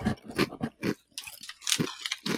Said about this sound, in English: Yeah, man, that's nice. That's good crunch for a potato chip. I always love a Ruffle. I love a Ridge chip. They're a relatively thick cut, so it's not going to dissolve in your mouth if you're drinking a soda or something at the same time.